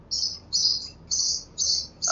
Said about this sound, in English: Is that the Yes. sparrow which is chirping?